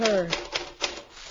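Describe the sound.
Several sharp typewriter key strikes clack at an uneven pace, moderately loud, as someone types business announcements, just as a voice trails off at the start.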